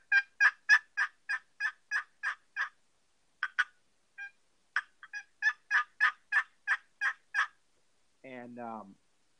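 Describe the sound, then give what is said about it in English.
A box call imitates turkey hen yelps: two evenly spaced runs of sharp, raspy notes, loud, with a short gap between. A brief lower warbling call follows at the end. “And then he's a beautiful, beautiful hen yelp with it.”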